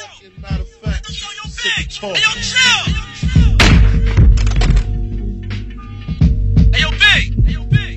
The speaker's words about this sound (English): you get to the last words and then you hit a gunshot and then Big fell on the floor